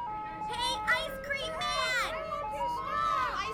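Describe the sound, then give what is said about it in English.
A tinkling ice cream truck jingle plays steadily at moderate volume from a truck crawling slowly along on a sweltering afternoon, while several children's excited voices chatter and call out over the melody. “Sure as flies to a pile of manure, the siren song of the ice cream truck began to draw children from their homes.”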